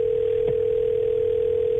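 A steady, unbroken telephone tone hums through a narrow phone line as a call is placed, loud and continuous, with a single faint click partway through and no voices.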